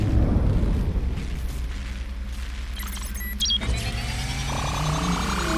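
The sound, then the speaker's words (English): A space crane powers down with a low mechanical rumble, then a loud electric whir with layered whining tones that waver and settle, steady, with no voices. “Power that space crane down this instant.”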